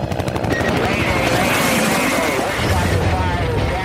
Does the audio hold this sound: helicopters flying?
yes